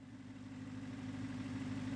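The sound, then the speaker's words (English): The engine of an old, beat-up, rusty Model T car (tin Lizzie) idles steadily and fairly loud on a sunny, warm afternoon, a continuous low rumble with a throbbing, mechanical hum and no voices over it. “Sitting in a car, this one, not so grand. A beat-up tin Lizzie, rusty enough for the town dump.”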